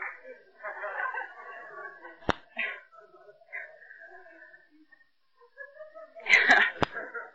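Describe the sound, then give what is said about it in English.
A single sharp, loud sneeze bursts out near the end, following several seconds of indistinct speaking voices and a brief click earlier on. “God bless you.”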